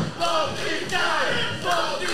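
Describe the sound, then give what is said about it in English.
The GTW wrestling crowd cheers for both wrestlers in the match, shouting in a dense, sustained roar, with voices rising in swells of yelling over a steady wash of noise. “And now the GTW crowd is cheering for both these guys.”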